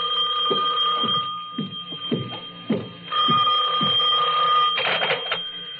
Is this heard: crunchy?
no